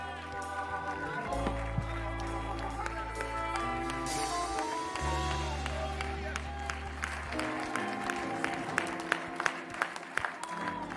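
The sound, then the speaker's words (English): A standing church audience gives the Lord a hand clap of praise, clapping steadily over loud music with sustained low bass tones, the dense applause tightening into more regular, rhythmic hand claps toward the end. “Can we give the Lord a hand clap of praise right now?”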